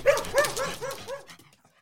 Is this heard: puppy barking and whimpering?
yes